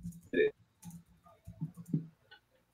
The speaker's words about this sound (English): So, ladies, we're back on the air. And someone's typing away. I am. Sorry. I'm on. I have angry Twitter fingers.